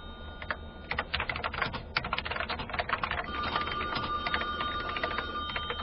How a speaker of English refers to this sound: Your hand's broken. The phone is right in front of you. Must we have this conversation every time the phone rings?